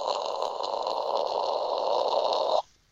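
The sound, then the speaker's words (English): A voice imitates an explosion with a sustained, breathy roaring hiss that holds steady and loud for about two and a half seconds, then cuts off abruptly into near silence. “Do you want me to do some samples for you, like some vocal explosions, like?”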